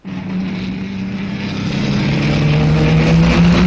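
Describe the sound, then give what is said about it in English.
Vintage racing car engines, with a Sunbeam taking the lead, roar loudly in a continuous, rough drone that swells over a few seconds at the French Grand Prix in Lyon, with no voices. “As expected, a Sunbeam takes the lead. They are the fastest cars here today.”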